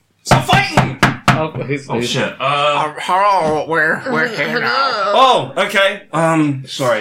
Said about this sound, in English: Okay, we'll go out the door. But you knock on the door to exit.